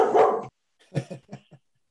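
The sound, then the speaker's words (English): A dog lets out one loud, drawn-out bark, then after a short pause follows with a quick series of four softer, shorter barks. No one speaks. “and his dog is joining in.”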